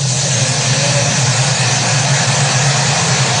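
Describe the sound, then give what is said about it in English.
A police car carrying Officers Chauvin and Lane pulls up, its engine idling steadily, a constant low rumble with a broad hiss over it, holding even for the whole few seconds with no voices. “So, Officers King, excuse me, Officer Chauvin and Officer Lane pull up.”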